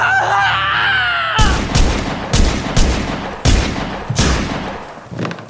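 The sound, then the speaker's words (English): A held, tonal musical chord gives way to a volley of loud, sharp gunshots from an intruder armed with a gun in a man's room, roughly seven or eight cracking bangs fired at uneven intervals, each with a booming tail. “But as Crane hung up his home phone, a sinister figure entered his room. Armed with a gun.”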